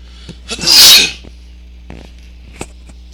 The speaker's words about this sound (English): excuse me, I'm going to sneeze.